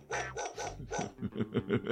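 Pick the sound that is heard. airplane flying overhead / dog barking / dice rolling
dog barking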